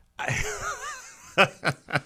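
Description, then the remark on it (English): Breathing into a microphone: a drawn-out, wheezy exhale with a wavering tone, then three short, sharp puffs of breath in quick succession. Nobody speaks. “if you heard some breathing there, I think...”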